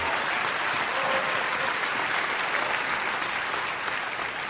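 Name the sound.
audience clapping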